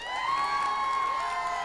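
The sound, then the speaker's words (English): A crew cheers loudly together in one sustained, high-pitched whoop, holding steady for nearly two seconds, with no other sounds standing out. “The crew erupted into applause and began waving and dancing.”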